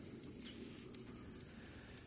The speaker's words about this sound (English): You do this, and immediately her eyes snap back before the sound of cicadas could be heard in the distance.